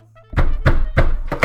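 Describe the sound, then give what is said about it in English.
Someone pounds hard on a neighbor's door: about five loud, heavy, booming knocks in a steady rhythm, the last two coming closer together, with no voices. “I knocked harder.”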